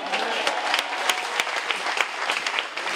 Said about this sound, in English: Good morning. I want to clap for you too. You know why? I want to clap for you because you have won a mighty victory to be here today.